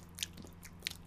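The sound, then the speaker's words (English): Wet tongue smacks against the roof of the mouth, a few short crisp clicks with sharp high-pitched snaps, spaced irregularly over a low steady hum, no talking. “It's my tongue and the top of my mouth.”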